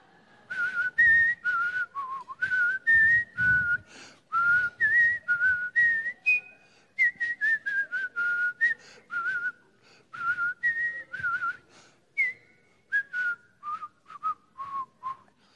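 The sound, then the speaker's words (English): A person whistles a simple, bouncy tune up close, a series of short pitched notes grouped into repeating phrases with brief pauses between them, with no talking. “I'm going to whistle the theme song for Jeopardy”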